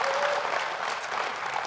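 An audience applauds steadily, dense clapping from many hands filling the room at an even level with no pauses.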